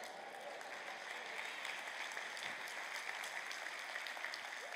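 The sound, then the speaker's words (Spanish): A church audience applauds themselves at the preacher's call during a sermon, a dense wash of many hands clapping at an even, sustained level with no voices rising above it. “Date un aplauso.”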